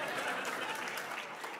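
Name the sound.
audience applause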